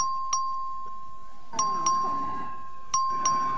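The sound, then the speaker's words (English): A legislative chamber voting bell rings in Austin for a record vote on final passage of HB 2571, a steady electronic tone with sharp paired chime strikes recurring about every second and a half over faint room murmur. “Clerk will please ring the bell.”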